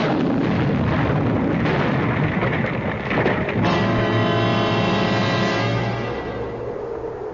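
A loud, roaring explosion fills the first few seconds with dense crackling noise, then gives way to a sustained ringing, humming tone that slowly fades. No voices are heard.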